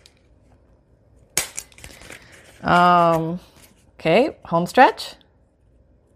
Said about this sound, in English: take off the bottom of your paper circle punch here so you can see where you're punching. And, yeah, that does help, so thank you.